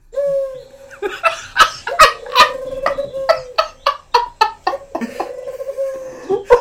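A human voice imitates a dove's cooing with a steady hooting tone, broken by a rapid series of breathy, chuckling bursts, fairly loud.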